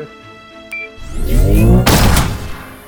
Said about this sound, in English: Wanna test out the plasma cannon, or not? I call dibs on the first shot!